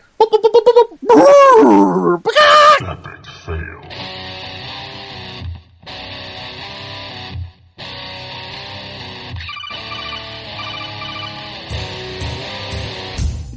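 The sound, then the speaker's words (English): A man's voice lets out a loud, wobbly squawking whinny for about three seconds, imitating a chicken-horse hybrid, before steady music takes over. “You want me to do the impression of a chicken horse?”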